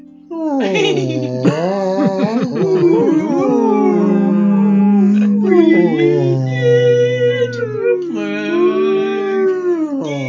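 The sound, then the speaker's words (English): A human voice makes long, mournful, sliding howls and moans, imitating somber music like whale song. It is loud and continuous for about ten seconds, with pitch rising and falling in slow swoops. “I like that what you did, it sounds like somber whale song.”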